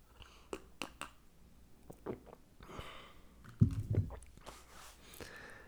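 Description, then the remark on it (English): Mouth sounds of someone sipping coffee from a cup: scattered soft clicks and smacks, then a louder gulp around the middle, with no talking. “And so think about that while I have a sip of coffee.”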